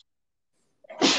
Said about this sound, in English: Excuse me. Bless you.